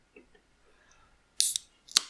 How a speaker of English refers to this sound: Ooh. Love it. Nice snap. Gotta love that can sound. It's another good sound. That'd be a good ringtone.